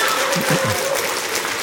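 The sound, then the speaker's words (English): A dense wash of loud audience applause, steady and continuous throughout, with a faint murmur of voices mixed low beneath the clapping. “Loud applause.”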